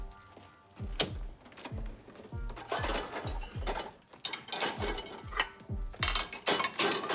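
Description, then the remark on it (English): Dishes being loaded into a dishwasher: a steady run of clinks, thunks and rattles as plates and cutlery are set in, with a rack sliding and clicking between them. No one speaks. “You relax. I'll just put them in the machine.”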